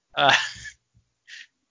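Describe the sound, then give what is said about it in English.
A single loud sneeze with a voiced intake that bursts into a noisy blast, followed a moment later by a short, quieter sniff. “Don't sneeze around me.”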